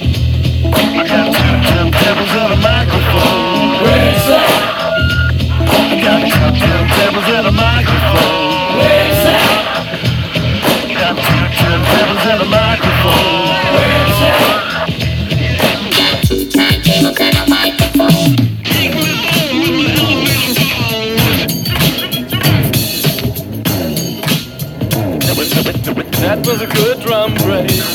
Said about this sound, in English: That was a good drum break.